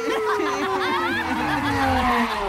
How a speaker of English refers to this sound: A squad car pulls up on the curb to deliver Commissioner Gordon to the scene of mounting mayhem.